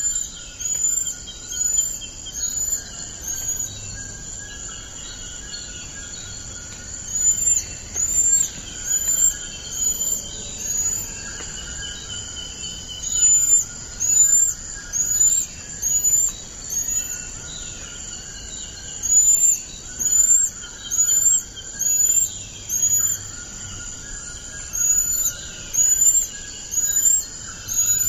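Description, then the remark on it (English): Golden lion tamarin calls: bursts of very high, thin whistled chirps repeating in quick runs, over a steady, buzzing insect-like drone. No one speaks. “And hear the sound of the golden lion tamarin.”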